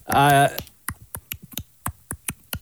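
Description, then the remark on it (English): A short voiced vocal sound, then a quick run of about ten sharp tongue clicks in an uneven, skipping rhythm, a mouth imitation of tap dancing, fairly crisp. “Dancing, tap dancing. Yeah!”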